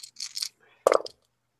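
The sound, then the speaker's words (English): A brief clatter of dice: a few quick, bright rattles followed by a sharper tumble that settles on a hard surface. Fairly quiet, with no voices. “I got a 0 on the dice on that one as well.”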